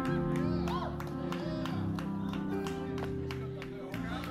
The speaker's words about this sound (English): Two people agree. Two Cowboys fans are clapping.